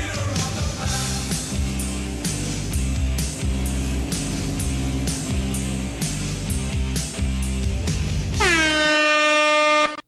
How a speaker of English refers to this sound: And also an air horn.